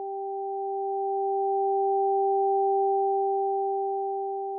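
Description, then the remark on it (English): High and low pure sine tones alternate in a smooth, unbroken stream, keeping an even, moderate loudness for several seconds with no voices or other sounds. “most right-handers hear the high tone on the right side.”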